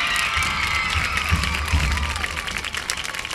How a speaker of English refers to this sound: Let's give all of our homecoming court one more round of applause.